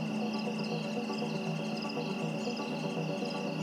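A dense chorus of crickets chirps steadily on Mount Rinjani as evening falls, with overlapping pulsing trills calling back and forth to form a continuous, fairly loud nighttime drone and no voices.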